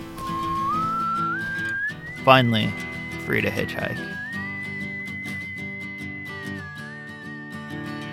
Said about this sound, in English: I can't help whistling.